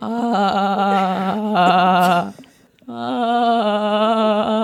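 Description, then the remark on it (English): A dolphin's mating-season call: two long, loud, nasal cries with a wavering, bleat-like quality, split by a short pause, the second rising and holding steady to the end. “The noise that they make, which is, I don't know if you really want to hear it because it's during mating season”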